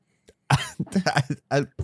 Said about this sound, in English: Still got a cough, but better.